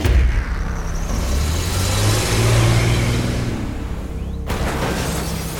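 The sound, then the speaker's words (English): A car engine revs loudly with tires squealing, its pitch climbing and holding for several seconds before the sound cuts off abruptly. No one speaks. “The squealing of tires were heard on the streets as the car plowed through the side of the house.”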